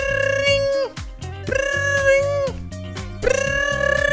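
A phone rings with a loud electronic ringtone: a buzzy, sustained synth melody that bends down and back up in pitch, over a steadily stepping low bass line, with no voices.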